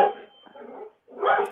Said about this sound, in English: So sorry. I think we must have a dog walking by. Something exciting is happening. Yeah, something good happening. Oh yeah, we've got a dog out for a walk. Yeah, that's big news on our street here.